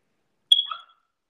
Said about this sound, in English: No, but did you hear my dog bark? Yes. Does your dog hate smoke detectors too? Because my dog absolutely despises smoke detectors. They make her nervous.